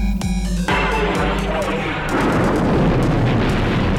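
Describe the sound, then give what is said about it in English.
A huge sci-fi explosion of the planet Alderaan, blasted by a space station's superlaser in Star Wars, erupts with a sharp blast, then rolls into a dense, sustained roar of rumbling debris that swells and stays loud to the end, with no talking. “We're coming up on Alderaan. You may fire when ready.”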